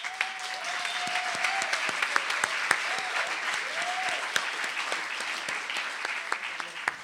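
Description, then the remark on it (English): Steady applause from a crowd for Pam Anderson fills the whole clip, a dense wash of rapid claps with sharper individual smacks standing out, while faint whoops or cheers rise briefly above it. “Give a round of applause to Pam Anderson.”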